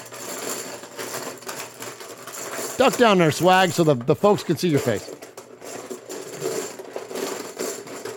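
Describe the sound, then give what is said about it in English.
A container is shaken to draw a winner, giving a steady, busy rattle and clatter that runs through the whole clip, with a man speaking briefly over it midway. “I'll shake this thing up, and we'll pick a winner.”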